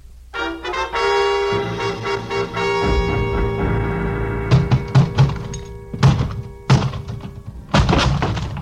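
A closet door lock is forced open with a run of heavy, irregular thumps and bangs, rising in force, while a sustained droning tone holds steady underneath.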